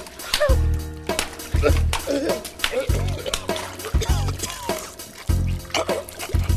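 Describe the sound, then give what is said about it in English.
Repeated heavy splashes of churning water in irregular bursts as a man flails and struggles in the water and goes under, mixed with strained gasps and grunting vocal sounds but no clear words. “He went under again. He didn't come back up.”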